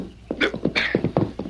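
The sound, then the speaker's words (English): A pony (a cayuse) trots over when called, its hooves clip-clopping in a quick, uneven rhythm of about seven hard knocks, moderately loud, with no one speaking. “Call your cayuse over here. Call him, Tonto. Here, Scout. Right smart-looking pony.”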